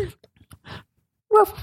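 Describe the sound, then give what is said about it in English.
A person on the phone imitates a dog's whine: a few soft breathy sounds, then a loud, high, wavering whimper near the end that quickly trails off. “Is it a dog on the phone?”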